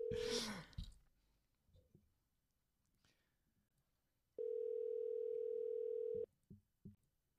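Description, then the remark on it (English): A steady telephone dial tone hums loudly for about two seconds as someone calls a person back, then cuts off abruptly, followed by a few soft clicks. Before it, a brief burst of handset noise and scattered faint handling sounds. “Let's call him back. I'm going to call you back.”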